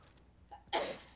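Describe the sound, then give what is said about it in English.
A single quiet sneeze: a short, faint intake of breath, then a sudden sharp burst of breathy noise that trails off within a fraction of a second. No talking. “Bless you.”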